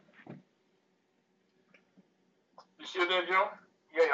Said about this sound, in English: you're breaking up.